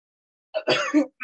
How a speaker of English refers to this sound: I'm sorry, y'all. I hope it's not. I was like, should I keep recording if I'm coughing? But I have listened to podcasts where people cough before. I'm trying to do it away from the mic, though